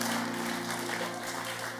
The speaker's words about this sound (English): Oh, your clapping is not good.